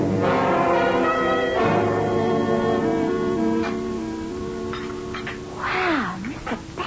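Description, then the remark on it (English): A rosewood clock strikes the hour with two loud, resonant bell-like tones whose ringing overtones hang and slowly fade, followed by a brief gliding, wavering tone near the end. “Then I sat down, the dark green bottle in hand, waiting for the rosewood clock to strike the hour.”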